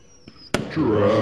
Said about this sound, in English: No, that was fireworks, though, in E.T.